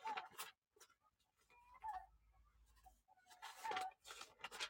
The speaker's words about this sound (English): And as y'all can hear, the hens are laying their eggs.